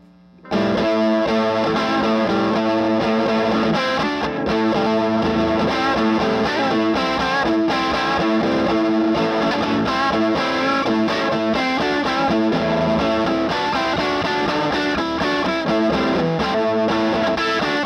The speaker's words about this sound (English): Now I will play some murky music on my little necked guitar.